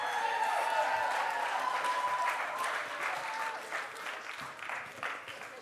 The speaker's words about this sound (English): All right. Hey, let's give another huge round of applause for the Hume staff.